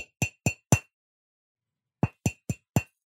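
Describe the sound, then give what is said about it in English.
Light tapping on a shaken Coke can before it is opened: four sharp, ringing metallic taps in quick succession, a pause, then four more, clear with no talking. “She shook it and shook it and shook it and shook it. And then she just gave it a few taps.”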